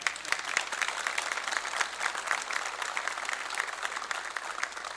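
Steady audience applause, a dense wash of many hands clapping at a fairly even level throughout, with no voices standing out.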